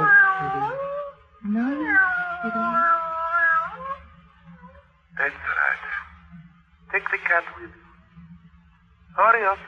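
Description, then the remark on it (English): A male cat meows in long, wavering, drawn-out cries, then lets out three shorter, harsher yowls spaced a second or two apart, fairly loud over a low steady hum. “Well, that's a handsome cat you've got there, miss.”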